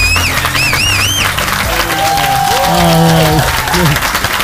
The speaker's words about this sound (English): Until the fake crowd cheers.